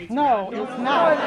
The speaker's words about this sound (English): It's a packed room in the Shaw Library. Every seat taken, every inch of wall taken, the crowd overflowing out the door.